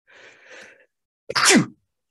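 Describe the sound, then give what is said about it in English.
A single loud sneeze bursts out after a soft, breathy intake of air, ending abruptly and followed by silence. “Bless you.”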